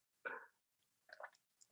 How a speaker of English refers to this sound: oh, let me drink some water. Yeah.